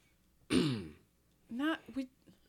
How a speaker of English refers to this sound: It's Christmas. I don't want to hear your coughing. Cough on your own time, Bob Cratchit.